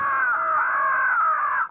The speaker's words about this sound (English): A tape recording of a crow distress call broadcasts the news that this is no place to spend the night.